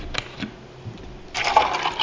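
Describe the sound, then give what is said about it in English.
A drink being poured into a glass, a steady splashing hiss that starts after a couple of faint clinks and grows louder, with no talking. “Here, you can have that one. Pour that in yours.”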